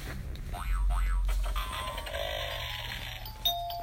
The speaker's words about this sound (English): They made a doorbell.